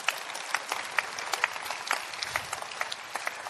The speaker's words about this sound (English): Are you okay? Clap, clap well so that I see that you are okay.